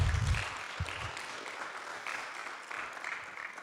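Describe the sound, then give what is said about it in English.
A church audience applauds, a steady wash of many hands clapping at moderate volume throughout, with a few low thumps near the start. “Don't clap, just buy me coffee.”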